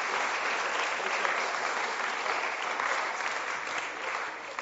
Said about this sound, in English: A round of applause for our millennial panel here. Thank you very much.